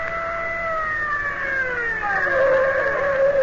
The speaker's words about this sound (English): I'll stop the car.